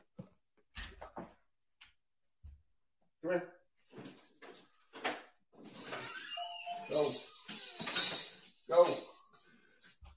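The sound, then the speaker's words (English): A bell on the back door jingles and rattles as a puppy rings it, amid scattered clunks and knocks as the door is handled and pulled open, with some muffled vocal sounds mixed in. “The puppy is relentlessly ringing the back doorbell.”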